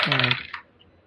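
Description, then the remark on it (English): Nine clear dice clatter briefly on a hard table, a quick ringing rattle followed by a single sharp click as they settle, fairly loud, with no voices. “I gotta stop rolling this game with nine dice.”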